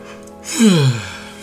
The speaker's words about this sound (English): Okay. I'm yawning now.